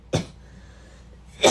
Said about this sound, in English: Sorry for the coughs, guys.